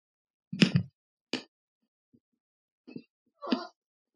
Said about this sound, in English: What is the opposite of dead air when you're just chewing? Here's the other thing. Chocolate air? Is this chocolate air? Chocolate air.